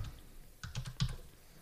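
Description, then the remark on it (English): A quick burst of typing on a computer keyboard while searching for the Blizzard Warcraft 3 Reforged custom game agreement: five or six soft keystrokes clustered in under half a second, after a brief quiet stretch, with no talking. “Let me know if I'm fucking up. Because I'm looking at the keyboard.”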